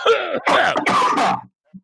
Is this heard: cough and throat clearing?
yes